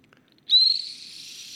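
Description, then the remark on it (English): After a brief silence, a shrill, breathy bottle whistle is blown and holds one steady high note, loud at first and then a little softer until the end. “Bottle whistle.”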